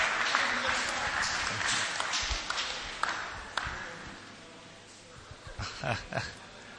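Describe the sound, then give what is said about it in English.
An audience claps for the brothers in a dense, steady burst of applause that gradually thins out, with a few scattered louder claps near the end. “Clap for the brothers.”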